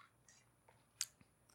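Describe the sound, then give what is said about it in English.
A quick, quiet sip of whiskey from a pineapple sippy cup, with soft wet mouth clicks and one brief sharper slurp midway, alone with no talking. “I am sipping whiskey out of one of my birthday presents from Megan, a pineapple sippy cup.”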